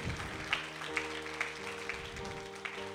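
An audience applauds with steady, dense clapping and a few sharper accents, while soft sustained musical tones hum underneath.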